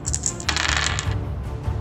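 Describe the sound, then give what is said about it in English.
Dice rattle and tumble across a hard surface, a quick cluster of clicking knocks that settles after a moment, with no voices; the dice are rolled for a game's random discovery check during a day of travel. “The dice indicate that the party has found something of interest.”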